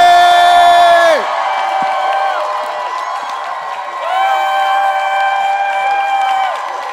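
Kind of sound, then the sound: crowd, audience cheering and clapping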